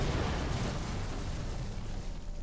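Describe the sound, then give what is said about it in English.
A deep, continuous rumble of explosions from explosive charges set in a factory merges into one heavy roar with no clear gaps, steady and loud throughout, with no voices. “His brow was furrowed and his ears pricked at the sound of the explosions coming from the factory.”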